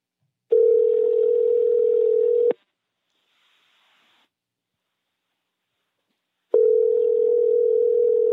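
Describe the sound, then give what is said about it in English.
An outgoing phone call ringing out unanswered: two steady, two-second electronic ringback tones separated by about four seconds of silence, clear, with no voices and nobody picking up. “Why don't you, I'm going to call her on my phone, but I want you to confront her.”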